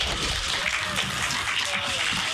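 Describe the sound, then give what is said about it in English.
A crowd of children clapping steadily, a dense patter of applause, with faint voices and chatter mixed underneath, as child volunteers come up to the front to help. “Give them a little clap as they come up.”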